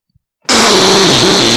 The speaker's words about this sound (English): That was a fake fart, because I couldn't summon up a real one to express my disgust.